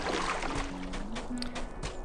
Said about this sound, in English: I'm going to swim. So I'm now swimming over a river here.